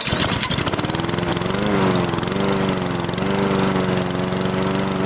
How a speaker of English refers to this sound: You had the lawnmower in the background. Might as well interview the lawnmower.